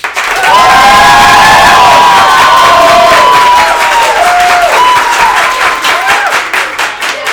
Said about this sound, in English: All right. So we're going to start with a round of applause for Fox News.